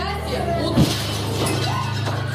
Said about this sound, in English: It's the biggest meteor in more than a century to hit the planet. 1,000 people were injured from shards of flying glass and debris. You saw the explosion from dash cams. You saw windows break.